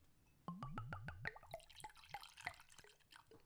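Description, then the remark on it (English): Dark 86-proof whiskey glugs from a bottle into a glass, a quick run of six or so hollow gulps rising in pitch, then settling into a bubbly, splashing trickle. No one speaks. “That was a great nice pouring sound. Glug, glug, glug.”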